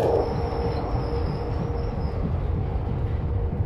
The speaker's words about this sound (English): It was a sound I've never heard before. It's one of these sounds, it's like a roar, a rattle. And sometimes you get the whine off the track.